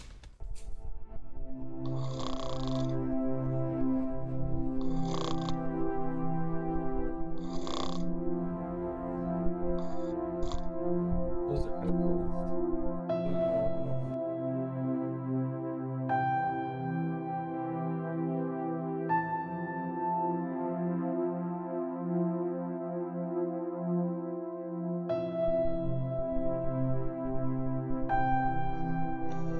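A person snores loudly and steadily with deep, rumbling, buzzy breaths, some sharper rasping bursts in the first several seconds, and no talking.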